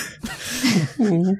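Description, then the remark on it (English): A person imitates a small cat sneeze: a breathy, hissing burst followed by two short, squeaky voiced sounds, fairly loud and quick. “Do a little kitty sneeze.”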